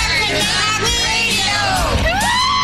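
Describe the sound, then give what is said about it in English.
A party crowd cheers and whoops loudly without a break, with overlapping high yells and sliding shouts that rise and fall in pitch over a dense wash of voices. “Sounds like a party, baby.”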